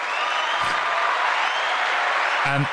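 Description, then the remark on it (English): A dense, steady burst of crowd clapping fills the whole stretch at even loudness, like a canned applause effect played from a sound-effect button, with a couple of brief cheer-like vocal bursts poking through. “That definitely deserves a round of applause.”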